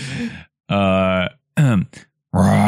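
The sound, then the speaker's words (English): A voice imitates a dragon breathing fire with a series of loud, growling roars and rasping bursts, separated by brief pauses. “That was respectively the sound of a fire breathing and a flying.”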